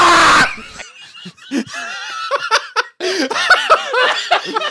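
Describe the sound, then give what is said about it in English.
A loud burst of noise opens, then a person's voice shrieks and squeals in wavering, high-pitched screams with laughter-like gasps, intense, continuing in short rapid bursts; a recording of the person screaming in voice chat after dying while playing a video game. “Yeah, I mean, I added a new sound effect of me screaming.”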